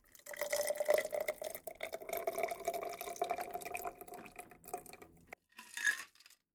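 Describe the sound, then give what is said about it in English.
A shaken, chilled cocktail is strained from a shaker into a champagne glass, a steady trickling stream for about five seconds with faint ringing tones, then stops, followed by a brief light clink near the end. “Then take the top off your shaker and strain it into a champagne glass.”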